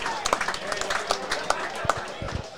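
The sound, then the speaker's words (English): A crowd applauds the under-8s of the Young Rammers and the Small Blacks at the end of their game, a loose patter of many hands clapping at an uneven rhythm, moderately loud, with a murmur of voices underneath. “And a huge round of applause for the under-8s.”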